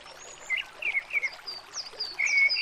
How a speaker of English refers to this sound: By a stream at the moment. But we'll probably leave it in a moment.